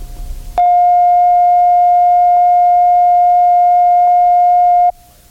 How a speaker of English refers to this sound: The following tone is a reference tone of 700 cycles per second recorded at operating level. Set the playback level control so that the tone reads zero on the VU meter.